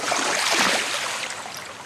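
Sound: flowing river water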